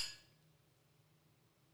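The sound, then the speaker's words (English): A single bright clink of wine glasses of Chardonnay touching in a toast, sharp at the start and ringing briefly before fading into quiet with a low hum. “So here's the Chardonnay. Cheers.”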